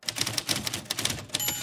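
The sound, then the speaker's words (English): Rapid keystrokes clatter on a typewriter with no paper in it as a father types a speech, a quick, uneven burst of roughly a dozen sharp clacks, fairly loud, with no voices. “speech on his typewriter, even though there's no paper there”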